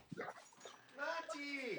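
Dogs whimpering, with a few short yelping barks early on, then a rising and falling high-pitched whine that carries steadily to the end.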